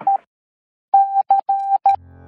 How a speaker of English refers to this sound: That's Morse code. Invented in the 1830s by Samuel Morse, an American inventor and painter. Now, Morse code assigns a set of dots and dashes to each letter of the alphabet, allowing for the easy transmission of complex messages across telegraph lines